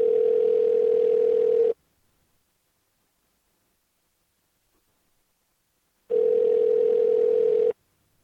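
A telephone ringback tone sounds twice while a call to Samsung technical support about a Samsung dryer is being placed: two long, steady mid-pitched buzzing rings about two seconds each, separated by a long silent gap. No one speaks.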